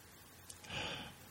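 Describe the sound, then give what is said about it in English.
A single breathy exhale from a person rushes straight into the microphone, a soft hissing burst about half a second long, preceded by a faint sniff and with no talking. “Can you hear me breathing right now?”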